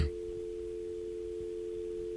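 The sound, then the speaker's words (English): A telephone ringing tone on an outgoing call to a man who works as a dental hygienist: a steady, mid-pitched electronic hum made of two close tones, holding unbroken for about two seconds over faint low background noise, with no voices. “It's ringing.”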